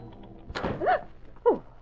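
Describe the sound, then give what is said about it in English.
A door bangs open with one sharp thud into an office at the Sentinel, followed by two short startled vocal cries; otherwise quiet. “When I got big things on my mind, I can't go around thinking of doors.”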